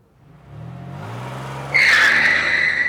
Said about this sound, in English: The tires of Mark's Mazda B2000 pickup truck squealed as we pulled into a Chevron parking lot